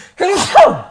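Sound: sneeze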